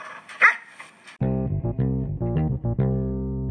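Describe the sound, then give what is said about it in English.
A dog gives one short, sharp bark near the start, followed by a run of steady, humming tones that stop and start in choppy bursts. Nobody speaks. “Use that as a sign to take a break and hang out with your dog for a second.”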